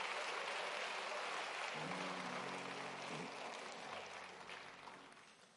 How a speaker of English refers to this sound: Let's give our choir a hand clap. Come on now.